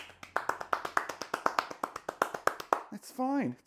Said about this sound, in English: I like this. We should clap again.